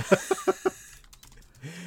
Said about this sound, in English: we both hear the typing of the other person.